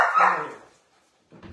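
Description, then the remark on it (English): A single loud, drawn-out bark from Piper, a female dog, given the command "speak", with a falling, slightly whiny tail, followed by a pause of silence and then the faint start of another sound. “Speak. She doesn't know what I'm saying.”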